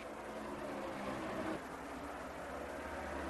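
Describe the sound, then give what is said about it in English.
Loud, steady roar of stock car engines at Darlington Raceway during the Transouth 500, as Dale Earnhardt crosses the start-finish line with Morgan Shepherd catching him. The pitch shifts suddenly midway as the cars sweep past. No voices. “just been completed as Dale Earnhardt flashes across the start-finish line, and Morgan Shepherd has caught him.”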